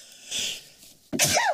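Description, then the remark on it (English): A single loud sneeze bursts out abruptly after a soft inhaled buildup, ending in a sharp, breathy spray of sound. “You farted and sneezed at the same time and took a screenshot.”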